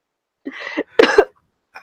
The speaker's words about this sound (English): Sorry, I'm dying for a second. I just randomly got a cough. Keep talking.